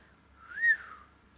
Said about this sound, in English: There was a whistle from Holly, a low, impressed noise.